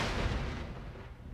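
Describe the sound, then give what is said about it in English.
Thunder from a thunderstorm, heard through an open window, a deep, rumbling boom with a heavy low-end burst that slowly fades over about a second, with no voices present. “Shut that window so the thunder isn't as loud.”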